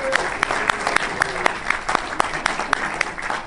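A round of applause from a group, with many hands clapping in a dense, steady patter and sharper individual claps standing out, sustained at a fairly loud level throughout.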